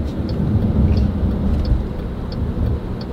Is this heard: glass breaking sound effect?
no